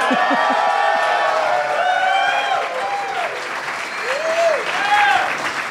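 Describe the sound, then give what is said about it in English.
Steady, dense applause from a crowd welcoming a guest to the stage fills the whole stretch, with rising whoops and shouted cheers breaking through, growing slightly louder near the end. “They're still clapping.”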